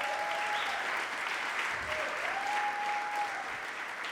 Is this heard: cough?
no